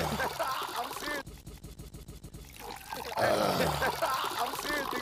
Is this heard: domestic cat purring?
no